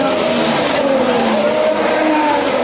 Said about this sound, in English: For 4 days, 20 turbocharged, multi-million dollar machines hurtle through Monaco's winding, narrow streets. There's nowhere in the principality you can escape the deafening roar.